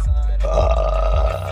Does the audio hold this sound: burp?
yes